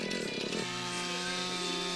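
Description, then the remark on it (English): A chainsaw engine drones steadily for two seconds, its buzzing pitch dropping and settling partway through as the motor changes speed, as a man on ice skates uses the chainsaw to drive himself across a frozen lake. No voices. “He's driving himself with a chainsaw, and he's got his skates on.”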